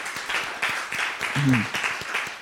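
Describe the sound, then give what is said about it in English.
An audience claps for the Lord in a dense, steady burst of many hands, with a brief vocal exclamation rising in the middle of the applause. “Okay, give the Lord a clap of it.”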